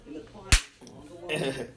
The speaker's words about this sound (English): He's like, you ready for this? I'm going to slap hands, and I'm going to slap the piss out of your face. Here we go.